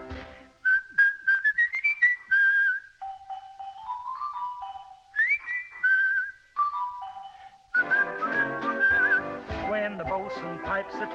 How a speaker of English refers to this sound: Oh, the boatswain's the fellow all the sailors obey, for he gives all his orders in a musical way. Oh, it sounds mighty pretty when he bosses the crew, for he's got a little whistle that's nice to listen to.